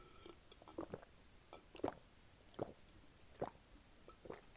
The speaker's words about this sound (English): I said, let me take a sip, and I just took a bunch of gulps.